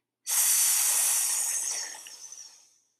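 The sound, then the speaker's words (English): A single long, steady hissing breath exhaled through the teeth after an inhale through the nose, as part of a breathing exercise with a mudra, fairly loud, lasting about two seconds before tapering off into silence. No one speaks. “Again, you're breathing in through your nose and out through the teeth with the sound.”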